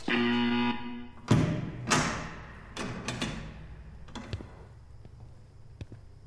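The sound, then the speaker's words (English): A man's knuckles rap on the two-way glass of a viewing room about five times in an uneven rhythm. Each knock is sharp and fairly loud with a short ringing tail, over a low steady hum. “Sir, please don't knock on the glass.”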